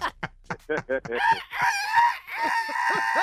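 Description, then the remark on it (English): A human voice on the Steve Harvey Morning Show mimics a rooster's crow: a few short clipped syllables, then a loud, drawn-out wavering call that rises and trails off, clear with no other sounds. “Cock-a-doodle-doo-doo-doo.”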